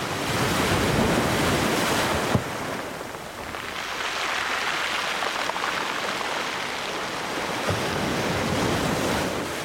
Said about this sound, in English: It sounds wild here today, but this is actually pretty calm. The waves are only 2 to 3 feet.